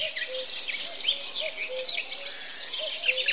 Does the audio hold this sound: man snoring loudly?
no